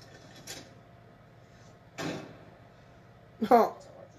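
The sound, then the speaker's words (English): A key rattles and scrapes in a locked door that has been blocked for years, in three short bursts, spaced by pauses of about a second and a half. The last jiggle is the loudest, over a low background hum. “This door's blocked for years and years and years and years, so if there's a pony in there, it's dead.”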